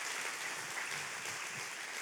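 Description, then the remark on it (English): An audience claps together in sustained, dense applause for the Lord, a steady wash of many hands with no pauses, moderately loud throughout. “How many of you give a round of applause to the Lord?”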